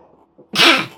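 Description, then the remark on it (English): A single loud sneeze bursts out after a quiet breathy intake, a sharp explosive hiss that trails off quickly. “Bless you, my child.”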